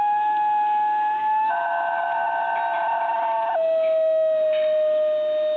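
A New Guinea singing dog lets out one long, loud, siren-like howl with a rich harmonic tone. The pitch holds steady, steps up partway through, then drops lower and sustains to the end.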